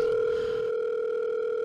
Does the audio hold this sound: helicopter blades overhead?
no